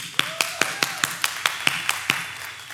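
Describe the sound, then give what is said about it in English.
A short burst of applause: about ten sharp, evenly spaced claps in a quick steady rhythm, moderately loud, with no talking over them. “little unprovoked applause there.”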